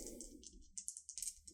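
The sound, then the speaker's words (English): Two dice are rolled for a fight check in a tabletop roleplaying game, tumbling and clattering across a hard surface in a quick run of sharp clicks that rattle for about a second before settling, over a faint low rumble. “So I'm going to roll 2 dice.”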